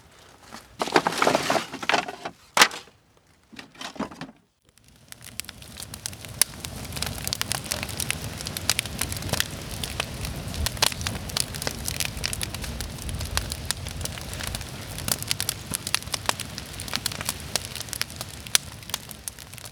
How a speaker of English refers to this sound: The fire fills the air with warmth, smoke, and crackling sounds for us to enjoy.